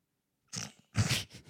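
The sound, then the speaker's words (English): A dog snorts and snuffles in two rough, breathy bursts, the second longer and louder, with no talking over it. “Your dog is so cute. Thank you for chilling out.”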